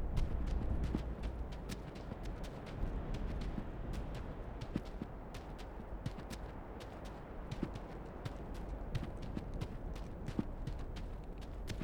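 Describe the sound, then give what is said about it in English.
Horse hooves clip-clop at an unhurried walking pace, sharp knocks repeating steadily over a dense, low rumbling background, with no voices present. “you wanna turn on the horse, Maggie? I'm good to walk a ways”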